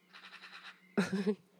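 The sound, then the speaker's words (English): A magpie's rapid, rattling chatter, a quick string of dry pulses, followed by a louder, harsher burst of sound, all over a steady low hum. “Can you hear the bird? It's a skata, I don't know how to call it in English, but yeah, they're so playful and cheaty.”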